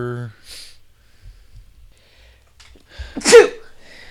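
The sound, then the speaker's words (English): A single loud sneeze bursts out after a few seconds of near quiet, following a brief trailing vocal note at the start. “He's allergic to good singing.”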